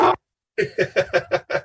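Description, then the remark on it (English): A dog named Toby barks: one short bark, a brief pause, then a rapid string of six quick, evenly spaced barks at moderate loudness, with no one talking. “Dogs are welcome on the show”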